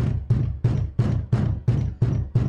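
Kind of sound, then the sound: household object, knocking on a door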